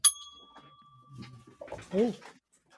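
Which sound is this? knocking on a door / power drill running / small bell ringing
small bell ringing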